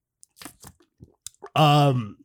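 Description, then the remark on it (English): A few soft clicks and small handling noises, then one loud sip of a drink: a sharp, noisy slurp lasting about half a second before cutting off. “Aggressive sip.”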